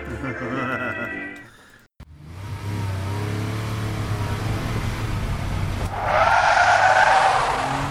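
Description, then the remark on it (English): A cargo truck transporting nuclear waste through town rumbles steadily after a brief tonal whine, then a loud, harsh skid of tires as it brakes hard and pulls over to a stop. “Pull over! I'm hijacking this truck!”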